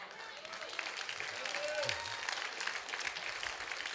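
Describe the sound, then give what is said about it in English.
A church audience claps steadily and densely for several seconds during a sermon, a broad crackling wash of many hands with faint murmuring voices mixed in underneath. “I know some of you clapping, some of you like, I don't know.”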